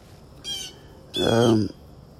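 Two bird calls ring out against a quiet outdoor backdrop in the morning: a short, high, reedy cry, then a longer, louder, fuller squawk that trails off after about half a second.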